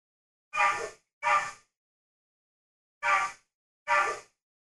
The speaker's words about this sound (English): Listen to this dog.